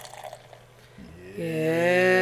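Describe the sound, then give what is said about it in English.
Barrel-aged beer pours steadily from an opened can into a glass after a quiet, faintly rustling start, the splashing tone growing louder and rising in pitch as the glass fills. No one speaks. “In the pour.”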